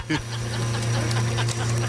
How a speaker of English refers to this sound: The bubbling is the coffee machine.